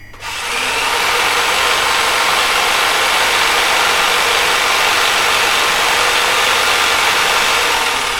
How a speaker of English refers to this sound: He is torturing them with some sort of battery-powered drill.